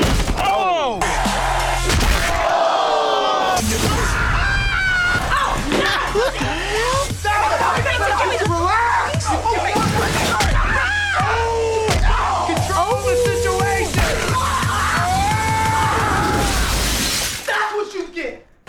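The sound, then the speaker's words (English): Chaotic highlight reel from a Wayans brothers film trailer, packed with loud yelling and screaming voices over booming impacts, punches, crashes and shattering sounds, dense and continuous for the whole stretch. “But then later there's running and screaming.”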